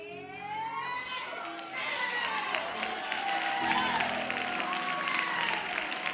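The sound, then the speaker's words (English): An audience claps steadily for several seconds, the applause swelling louder partway through, with voices calling out and cheering over the dense clapping. “Everybody clapping is clapping because they know.”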